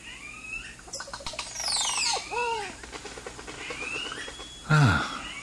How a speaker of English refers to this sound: Oh, that's some bird they've recorded. Certainly is peaceful.